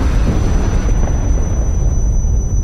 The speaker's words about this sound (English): An explosion shook the ship, and flinders of glass and debris flew across the room.